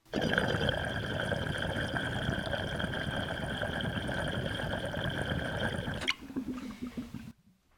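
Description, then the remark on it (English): Steady, dense bubbling and gurgling of water churning through a large double-diffused water pipe, loud, running continuously for about six seconds before cutting off into a brief quieter trickle. “Similar, but you can really hear the water volume moving in the juggernaut.”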